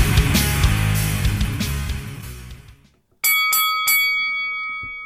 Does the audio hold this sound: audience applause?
no